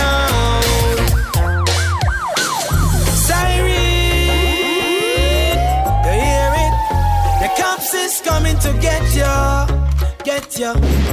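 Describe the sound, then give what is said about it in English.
A police siren wails loudly, its pitch sweeping up and down in repeated cycles, laid over a pounding, bass-heavy musical beat that keeps going throughout. “Get ya, siren, it coming.”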